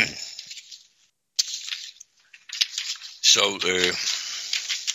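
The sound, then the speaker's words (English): Papers rustle and crinkle in uneven bursts, with a short pause early on, then a stretch of steady shuffling while a voice briefly sounds over it toward the end. “I got your papers all shuffled around when you asked me that.”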